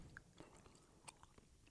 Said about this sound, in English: I can't decide if we're supposed to chew on this or not. It's like really hard to chew. It's like not hard enough to be suck candy and not soft enough to be chewy candy. I mean, I'm getting through it.